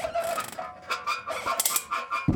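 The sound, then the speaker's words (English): Crows caw in a rapid, overlapping series of harsh, raspy calls, fairly loud, with no one speaking. “How many more crows are left?”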